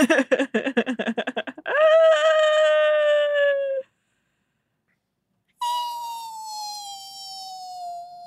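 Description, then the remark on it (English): A voice imitates a balloon letting out air: a quick run of sputtering pulses, then a long, high, slowly sinking squeal, a pause, and a second drawn-out whine that gradually drops in pitch. “That's me as a balloon letting air out.”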